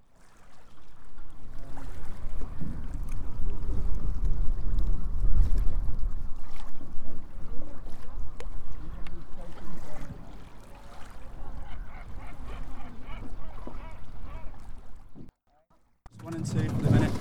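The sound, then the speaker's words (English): A rowing gig moves steadily through water, leaving the land behind, with continuous splashing and sloshing, indistinct voices in the background, and a brief near-silent gap before the water noise returns. “Right, we're in the boat now, in the gig.”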